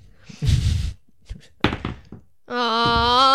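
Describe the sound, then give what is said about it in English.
Dice land on a table with a dull thunk, followed by a few light clicks as they settle, rolling a 1. Shortly after, someone lets out a long, drawn-out groan. “Well, I rolled a 1, but I have a plus 5.”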